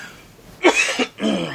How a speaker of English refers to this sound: I'm going to be coughing a lot, by the way. I have some kind of allergy thing going on.